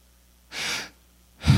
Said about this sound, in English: The breath that you're breathing in right now is a gift from God.